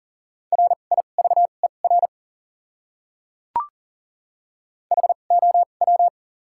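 Fast Morse code at about 40 words per minute with doubled character spacing: a steady mid-pitched tone keyed into quick dots and dashes, in two short bursts separated by a pause broken only by a single click.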